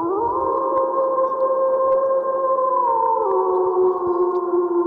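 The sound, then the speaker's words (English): A chorus of wolves howling together, several long sustained tones layered and shifting slowly in pitch, loud and steady throughout with no talking. “This howl is for you.”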